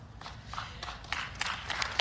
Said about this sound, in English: That is what's known as a smattering of applause. I think she was counting on the big ovation. She was pausing. Are they going to clap?